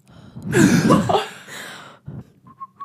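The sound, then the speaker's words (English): A person attempts a chicken-like whistle: a loud breathy rush of air, then a few short, thin whistled chirps at the end, with no talking. “There we go. Chicken whistle.”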